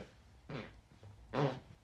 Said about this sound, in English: Fucking hell, that was three different. That's so three completely different farts in one. Jesus. And it ended up really gassy at the end.